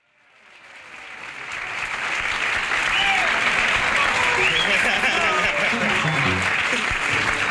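A live jazz concert audience breaks into applause that swells over the first couple of seconds, then holds as a dense, steady roar of clapping with scattered shouts and whistles mixed in.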